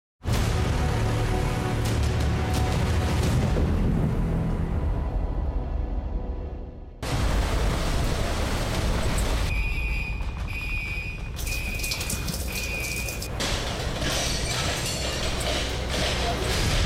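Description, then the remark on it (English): Category 4 Hurricane Harvey winds roar loudly and steadily in Rockport, Texas, with rattling and banging from a hotel being ripped apart. Partway through, an alarm beeps in short high-pitched bursts over the constant howl. “He's taken cover in a hotel that's being ripped apart by the Cat 4 storm.”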